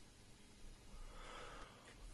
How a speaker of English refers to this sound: I'm allowed to breathe. I'm allowed to take a deep breath.